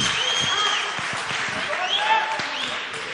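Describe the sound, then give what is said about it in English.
A live audience at a panel discussion applauds steadily for the whole stretch, a dense wash of many hands clapping at once, with scattered cheers and voices rising through it. “Yeah, and everybody can clap.”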